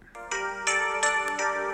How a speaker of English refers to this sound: Oh, man. The fucking synthesized wind chime keyboard is on every goddamn Disney song. I want to punch its MIDI face in.